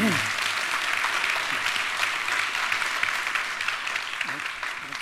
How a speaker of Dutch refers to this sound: Dus ik wil een groot applaus voor ze.